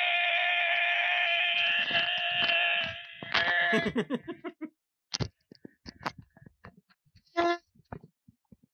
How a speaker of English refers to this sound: spinning his headset around himself while yelling.